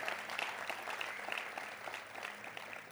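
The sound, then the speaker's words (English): A church audience claps steadily together one more time to thank God, a dense, continuous patter of many hands at even loudness with no voices standing out. “Come on, if you have faith for it, let's clap one more time.”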